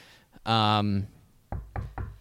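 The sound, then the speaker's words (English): A brief vocal sound, then four quick knuckle raps on a wooden surface in an uneven rhythm, each knock sharp and fairly loud. “unless he explodes his ACL and his Achilles at some point in time this year, knock on wood.”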